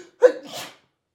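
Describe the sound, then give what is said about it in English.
A single sneeze, fairly loud: a quick voiced intake snapping into a harsh, breathy burst that trails off within about half a second, with silence on either side. “Interviewing sneezes?”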